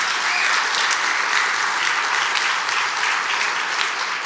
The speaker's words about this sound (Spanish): Entonces dar un aplauso fuerte al Señor.